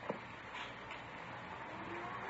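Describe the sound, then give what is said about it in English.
A car engine rumbles steadily, a low idling drone with a faint click at the start, as if a vehicle has just rolled up and stopped. No one speaks. “Here's a car.”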